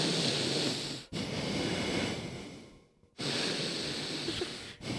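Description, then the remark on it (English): A voice imitates the loud, heavy snorting breaths of a very drunk man slumped in a car's passenger seat, three long noisy rasping pulls, each broken by a short pause, with no words spoken. “He went, I was like, you in manual breathing mode?”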